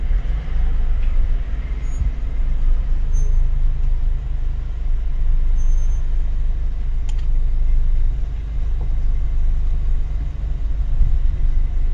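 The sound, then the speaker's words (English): Steady low engine rumble of four safari vehicles idling while watching a leopard, with a fifth coming up behind, a continuous deep drone with faint higher rattles and ticks, no speech over it. “There's four cars at the moment. There's a fifth one coming up behind.”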